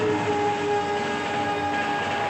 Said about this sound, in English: You feel the train, can't you? I mean, you can feel the train. It's vibrating, even your car, and then it speeds by.